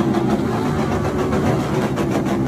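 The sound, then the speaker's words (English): Several motorbike engines, revved by Mongrel Mob gang members as Mr Taiatini's casket is driven off in a classic red Ford in Ōpōtiki, rumble loudly and continuously, a thick low growl with a steady drone and slight surges in intensity, no voices present. “Gang members revved their motorbikes as Mr Taiatini's casket was driven off in a classic red Ford.”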